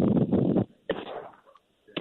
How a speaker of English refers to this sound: Whoop, let's see what we got here. Shots fired. And back. Yeah, shots fired. Three birds down.